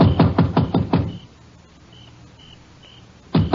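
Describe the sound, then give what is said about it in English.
A quick burst of about six firm knocks on the wooden door of a dark country house at midnight, then a quiet pause with faint high chirps in the background before another knock starts. “I left the car on the road and slipped up to the house. It was dark. I knocked.”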